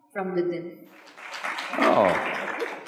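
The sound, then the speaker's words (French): A voice briefly rings out, then an audience breaks into a steady wash of applause that swells and continues, with many overlapping claps blending into a loud, noisy roar. “Tant de cœurs brisés ici qui applaudissent.”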